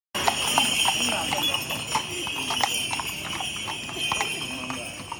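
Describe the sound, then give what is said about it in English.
Horse hooves clop steadily on the pavement in an uneven, repeated rhythm as a pilgrimage procession with oxen arrives after dark at a small church in Cagliari, over a constant background hum with faint murmuring and a light jingle of the oxen's bells. “We waited expectantly for the procession to arrive, and eventually we heard the bells of the oxen and the hooves of the horses on the pavement.”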